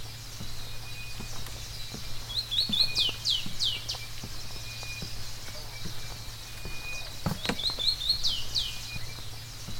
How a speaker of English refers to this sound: The dawn chorus.